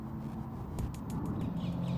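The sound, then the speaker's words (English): A few harsh, rattling calls from a pair of magpies in a park burst out over steady outdoor background noise at 10 a.m. on a quite sunny Monday with a few clouds, brief and clustered together in the middle of the stretch. “The magpie couple are occupying their usual part of the park.”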